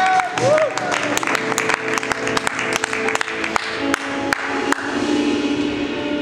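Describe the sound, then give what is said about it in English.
An audience at Real Life church breaks into sustained applause as the pastor comes up to speak, a dense wash of many hands clapping with sharp individual claps standing out, steady and fairly loud across the whole stretch, with a few whoops mixed in. “And so as he comes up, let's give him a big round of Real Life applause.”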